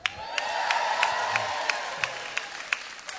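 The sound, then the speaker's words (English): A crowd cheers and applauds together, a steady wash of voices and clapping, with sharp claps landing in a quick, regular rhythm throughout, full. “And all of you would cheer.”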